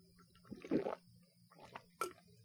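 Someone sips a drink of water whose ice has completely melted: a soft wet slurp, then a couple of smaller swallowing gulps and a brief liquid click, all fairly quiet, with no talking.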